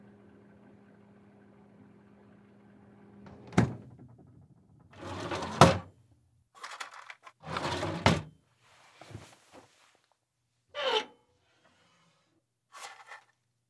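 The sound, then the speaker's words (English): A refrigerator door opens and closes: a low steady hum, a sharp click, two louder thumping, rattling bursts, then a few brief softer clacks and a last faint tap, with no talking. “The Fridge Audio Prop Set.”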